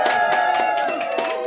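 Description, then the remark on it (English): An audience holding up stethoscopes cheers in support of a team of scientists, shouting together in a loud, steady roar of many voices, sustained without a break for the whole moment. “If you happen to be wowed by my team of super scientists, hold up your stethoscopes and give us a cheer.”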